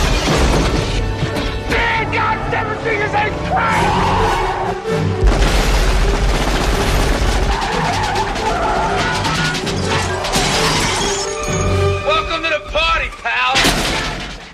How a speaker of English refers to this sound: The Chinese men open fire, riddling the police car with bullets.